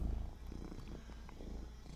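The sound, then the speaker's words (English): A cat purrs steadily, a low continuous rumble with a soft pulsing rhythm, with no talking over it. “I don't know what's getting into this cat today.”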